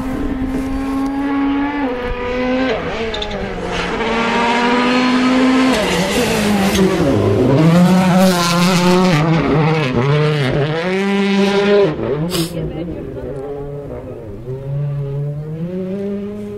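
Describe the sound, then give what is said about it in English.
The second of the Hyundai rally cars roars past at speed in Cornwall, its loud engine note climbing and dropping repeatedly as it shifts through gears, with the sound of its butterfly throttle and a harsh burst near the end, and no talking. “Second of the Hyundais. Listen.”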